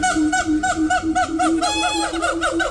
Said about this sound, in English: A monkey. I know someone will say, that's not a monkey, that's a chimpanzee. It's one or the other, but this is the cue to call when you hear it again.